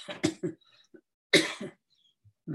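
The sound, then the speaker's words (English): A man coughs in two harsh, throaty bouts separated by a short pause, with a few softer rasping breaths and a faint throat sound in between. “I can talk without coughing here.”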